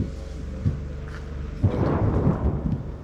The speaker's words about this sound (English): Incoming. It's a mortar, explains the doctor. Yes. Sometimes it rustles and then bang.